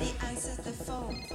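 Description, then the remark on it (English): A telephone rings, its trilling bell tones sounding fairly loud over a short stretch, with a busy, slightly cluttered background. “Somebody answers the phone.”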